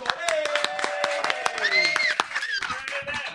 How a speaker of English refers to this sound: Ladies and gentlemen, please go all crazy with all the applause you can muster using both your hands for the comedy might of